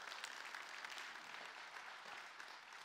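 A crowd claps steadily for the full three seconds, a dense, even wash of many overlapping hand claps with no voices standing out.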